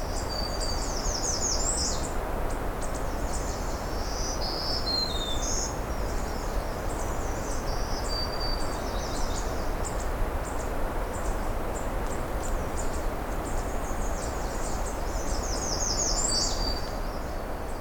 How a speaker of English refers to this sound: Of course, lots of red starts here too.